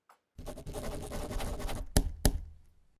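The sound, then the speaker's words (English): A pen scratches quickly and steadily across paper for over a second in a dense, rasping burst, then two sharp taps close it off: two signatures being signed to receive a cake order. No voices. “Insert two signature sound effects.”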